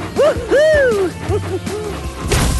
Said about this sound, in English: A big sack fell off one of Thomas's cars and nearly landed on a small green frog.